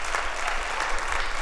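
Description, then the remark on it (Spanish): An audience claps steadily for the audiovisual team, the dense patter of many hands at a fairly loud, even level throughout with no pauses. “Mire, démelo un aplauso a Audiovisual porque yo lo puse a trabajar.”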